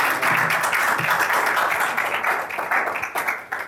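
A church audience breaks into applause welcoming a speaker, many hands clapping in a dense, steady roar that holds strong for a few seconds before slowly thinning toward the end. No one speaks over it.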